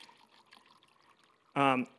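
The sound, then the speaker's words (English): Water pours into a cup in a soft, steady trickle for over a second, then a voice starts speaking loudly as the pouring ends. “It's interesting how we look at this, and so I'm just going to pour some water here.”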